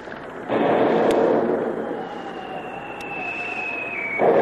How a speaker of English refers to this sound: the submarine comes to the surface, not more than 1,000 yards away, and opened fire with its 3-inch deck gun, sending the first few shots screaming through the rigging to find the rain.